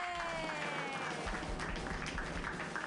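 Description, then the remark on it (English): A group bursts into loud, sustained applause, with dense rapid clapping throughout and some high cheering voices mixed in over the steady roar. “Everybody clap wildly.”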